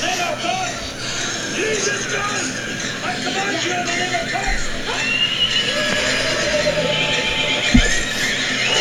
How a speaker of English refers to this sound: Horses.